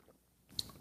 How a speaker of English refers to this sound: Fill it with your favorite liquid. I like coffee. Now join me for the unparalleled pleasure, the dopamine of the day, the thing that makes everything better. It's called the simultaneous sip, and it will be sipped around the world. Now, go.